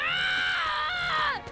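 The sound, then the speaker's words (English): A person lets out a single long, anguished scream of pain, loud, holding a strained high pitch that wavers before sliding downward and breaking off. “I do so love the sound of your screams.”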